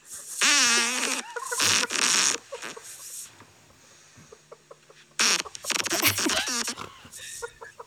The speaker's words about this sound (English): I will say I have Crohn's disease and I stayed up the entire night before drinking craft beer. Oh, geez. And probably eating like pizza or something very bad. So this is the morning after. I'm so excited. So excited. This is a special fart.